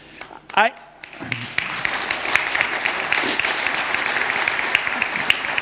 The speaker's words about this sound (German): Jetzt haben die mit Festanstellung geklatscht, immerhin.